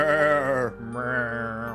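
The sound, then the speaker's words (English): A person imitates a cow's moo, a loud, drawn-out, wavering voiced call that briefly breaks off and then carries on in a second sustained moo. “For some reason, I went to cow.”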